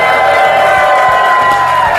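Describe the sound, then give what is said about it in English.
A large crowd at Summit 2017 cheers and whoops loudly and continuously, a dense roar of voices with high shouts and whistles rising above it throughout. “And we have an absolutely amazing crowd, as you heard them here.”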